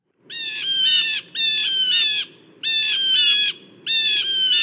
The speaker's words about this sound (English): That's a blue jay. It's spring, birds are everywhere. You just have to look and listen